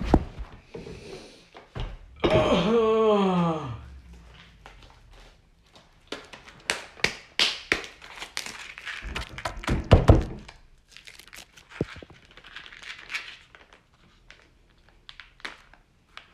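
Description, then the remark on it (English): A juice container being opened: a brief squeaky creak, then a run of plastic crinkles, sharp clicks and soft thunks scattered irregularly, with no one speaking. “Oh yeah, I didn't open the juice, so I'll do that.”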